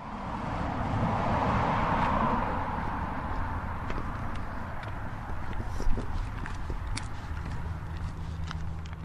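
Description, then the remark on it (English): Steady footsteps of one person walking alone outdoors along Paseo de Oñate, Española's main street downtown near the Rio Grande, a regular crunching rhythm over a broad wash of passing car and truck traffic, with a brief sharper knock partway through. “I'm the only person walking around here.”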